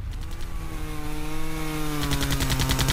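A droning chainsaw engine runs steadily throughout, joined by rapid, regular bursts of machine-gun fire at the start and again over the last second, loud with no talking.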